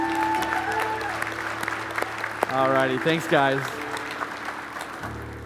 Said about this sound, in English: In Jesus' name, amen. Can we give this family another round of applause?